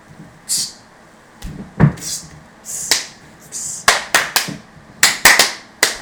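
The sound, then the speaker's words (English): Sharp, bright hand slaps ring out repeatedly, a few scattered at first and then a quick cluster of crisp smacks near the end: high fives given five times. “High fives. Five times.”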